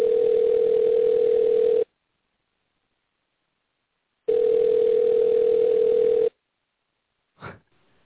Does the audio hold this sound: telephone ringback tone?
yes